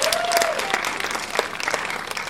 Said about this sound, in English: So I want to thank North End Subaru. A big round of applause for them.